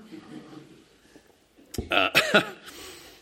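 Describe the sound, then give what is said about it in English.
After a quiet, low background murmur, a loud cough erupts in a quick cluster of three or four harsh, throaty bursts, then trails off into a faint rasp. “That wasn't almost a vomit. It was just a cough.”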